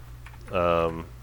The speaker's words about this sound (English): It's like, let's see, I'm going to do a real quick math. You can hear my keyboard.